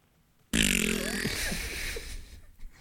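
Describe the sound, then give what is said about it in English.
A voice makes a fart noise with the mouth: one loud, buzzy, sputtering raspberry that starts abruptly and holds for about two seconds before tapering off, with no talking. “It's funny because he made a fart noise.”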